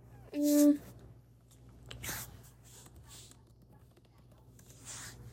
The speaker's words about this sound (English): Sorry, you guys heard me typing with shit. You guys hear me typing? It's because I'm on my computer.